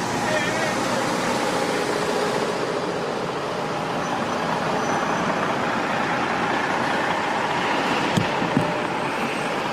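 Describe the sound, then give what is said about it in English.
A bus drives along a road, producing a loud, steady engine rumble and broad road noise that holds for the whole stretch, with a couple of brief knocks near the end. “I want y'all to check this bus out. Look at this damn bus.”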